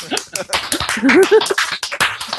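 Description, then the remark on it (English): A short burst of audience applause, with quick overlapping claps throughout and a brief voiced cheer rising through the middle. “Oh shit, we were supposed to applaud there.”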